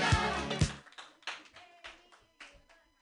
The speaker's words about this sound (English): All right, I'm gonna go up and tell jokes. So here we go. Clap for me. Yay.